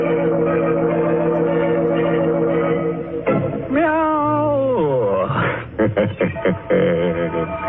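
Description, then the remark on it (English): A cat wails in long, rising and falling yowls that bend up and down in pitch, loud, after a steady droning tone, with a thin, muffled quality. “Everybody's dead but the cat.”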